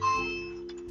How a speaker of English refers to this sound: And the bell is ringing.